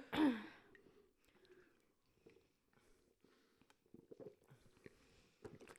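Someone gulps down Sprite in a drinking challenge: a breathy exhale at the start, then a run of soft, repeated swallows and wet clicks, fairly quiet, with no talking.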